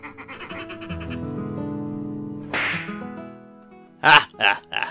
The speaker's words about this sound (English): Oh, them flippers, flapping and slapping about and whatnot.